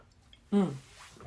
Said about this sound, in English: I mix it with water, swig it down.